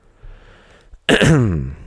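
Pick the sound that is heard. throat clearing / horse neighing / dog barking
throat clearing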